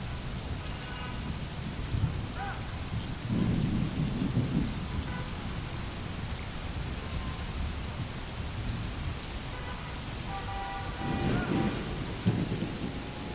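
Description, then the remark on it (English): Steady rain falls throughout, with deep rumbles of thunder rolling in twice, once early and again near the end, moderately loud. “Well, I just listen to the rain and imagine myself far away on a tropical island.”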